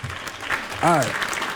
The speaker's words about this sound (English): Hold on. Can I get some applause?